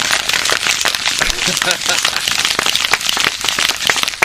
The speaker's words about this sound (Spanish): Si escuchan los aplausos aquí, por cierto,